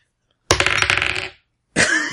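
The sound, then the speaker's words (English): Dice clatter and tumble across a hard tabletop in a loud burst of rapid clicks for a disguise roll in a game, then fall silent before a second short rattle begins. No one speaks. “Harold, give me a disguise roll.”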